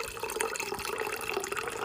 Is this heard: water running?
yes